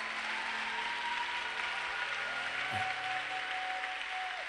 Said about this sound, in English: Your clapping must be better.